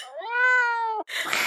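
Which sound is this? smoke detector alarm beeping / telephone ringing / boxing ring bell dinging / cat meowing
cat meowing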